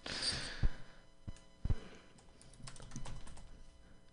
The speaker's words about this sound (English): And I'm typing it in right now.